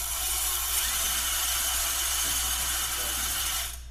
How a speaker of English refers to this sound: And then you just wind it up with the drill. And it's just a simple process that we made a lot more efficient.